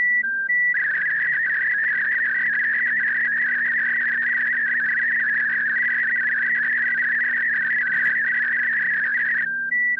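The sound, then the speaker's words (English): An Olivia digital radio signal using 4 tones: a steady, warbling stream of mid-pitched tones hopping within a narrow band, bracketed by short beeps at start and end, with a faint low hum beneath. “Now listen to the same Olivia CQ with 4 tones in a 500 Hz bandwidth, or Olivia 4500 as they call it.”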